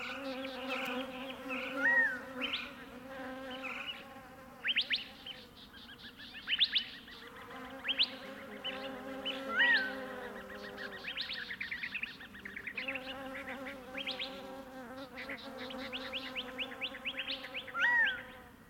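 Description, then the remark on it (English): A steady, droning hum of many bees fills the mid-morning desert air continuously, while a black-throated sparrow's bright, tinkling phrases ring out repeatedly above the buzz. “Here's a commonplace desert songbird, a black-throated sparrow, thoroughly awash in the bee buzz of the mid-morning soundscape.”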